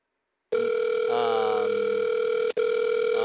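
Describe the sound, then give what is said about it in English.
A telephone rings with no answer on a call to an IHOP restaurant on East 14th Street in New York, heard as a steady, buzzy electronic tone that holds for nearly three seconds with one brief dropout near the end. No one speaks. “Nobody's answering. Why is no one answering?”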